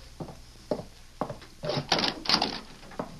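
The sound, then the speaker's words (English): Several dull wooden knocks and clunks, then a longer creaking, scraping stretch as a wooden door is opened to someone at the door, ending with another soft thump; moderately loud, no talking. “See who's at the door. No, no. It all might right, be... I'll open it myself.”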